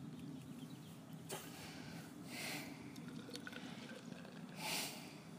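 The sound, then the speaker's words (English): The Garden Brewery Session IPA, a 4% beer from Croatia, being poured into a glass: two soft, hissy splashing bursts of liquid follow a single sharp click, all fairly quiet over a low steady background, with no one speaking. “Right, let's get this out into a glass and see what I think.”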